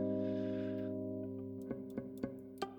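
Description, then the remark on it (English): An A flat major 7 guitar chord rings out and slowly decays, followed by four light, evenly spaced scratchy strums over the sustaining notes, fairly quiet, with no voices. “Let's say we were strumming A flat major 7. Okay, so we're strumming A flat major 7.”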